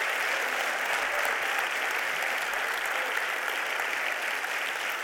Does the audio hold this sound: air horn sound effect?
no